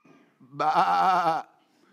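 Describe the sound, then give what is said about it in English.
A single sheep bleat rings out clear, a wavering, quavering cry lasting under a second, with faint low murmuring just before and after it. “He's shepherding sheep for the last 40 years.”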